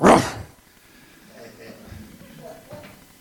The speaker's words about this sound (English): That dog's been given a bark.